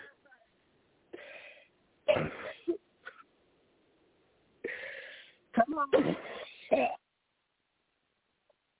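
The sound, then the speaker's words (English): A woman coughs and clears her throat in several harsh, raspy bursts, fairly loud, with brief pauses between fits and a few quiet words spoken, as people pray over her and tell her to cough it out in Jesus' name. “That's right. Cough it all out.”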